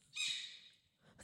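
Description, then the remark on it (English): A porcupine lets out a high, squeaky, drawn-out call, followed by the start of another squeak, fairly loud with no talking. “Does this sound like this thing is saying fuck again and again?”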